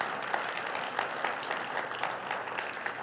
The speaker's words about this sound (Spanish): ¿Podemos dar un aplauso fuerte al Señor?